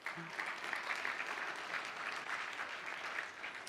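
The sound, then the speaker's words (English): A church audience breaks into steady applause for its own donation of over $25,000 to its Mexico team, a dense wash of many hands clapping at an even level throughout, with no voices rising above it. “Yeah, you can applaud for that.”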